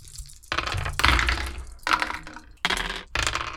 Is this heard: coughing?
no